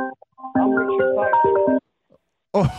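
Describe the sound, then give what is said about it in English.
A colleague's mobile phone ringtone plays a short, loud electronic melody of stepped notes for about a second, then stops abruptly before a voice begins speaking. “sorry, my colleagues, his phone's playing up.”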